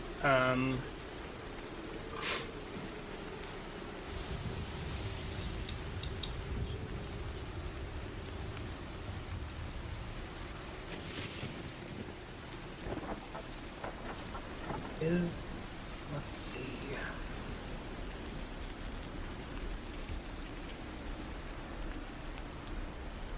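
Steady, hissing rain pours throughout, with a deep roll of thunder rumbling low in the background early on and a few brief sharper knocks and drips later.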